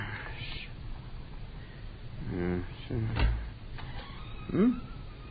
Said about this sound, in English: Blasted door.